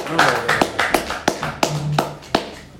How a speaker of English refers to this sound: I should be the one clapping over here, right?